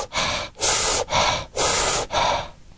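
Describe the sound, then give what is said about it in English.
A voice imitates Kussmaul respirations, known as fish breathing: four loud, airy, deep gasping inhales and exhales in a steady, fairly quick rhythm, with no talking. “Or there's Quismal's respirations, that fish breathing.”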